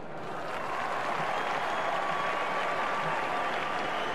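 An audience applauds the St George team after the grand final, steadily for about four seconds, a dense, even wash of many hands clapping that holds at a constant loudness without rising or fading.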